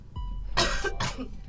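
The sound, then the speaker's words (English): Two harsh coughs in quick succession, fairly loud, with a low background hum and no talking. “Coughing someone over here.”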